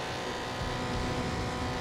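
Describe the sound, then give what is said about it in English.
Race cars roar as they accelerate with a nitrous boost, a dense, steady engine rumble that swells slightly partway through and stays loud, with no voices. “You can hear them hitting their NOS.”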